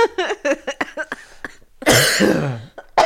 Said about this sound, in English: Stop making me cough.